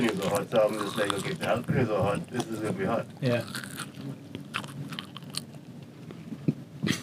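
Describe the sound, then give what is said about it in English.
A crisp, crunchy bite into a jalapeno, followed by several chewing crunches, with people talking over the first few seconds. “That's crunchy too.”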